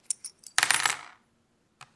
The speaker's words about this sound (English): Like every major decision in my mom's life, she consulted an ancient Chinese oracle called the I Ching. This begins by tossing brass coins 6 times.